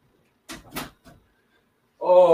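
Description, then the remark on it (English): A door swings shut with a few quick clunks and a final light click, followed by a brief pause before a person begins speaking. “Oh, maybe the closed door will help cut down the bark-a-thon noise.”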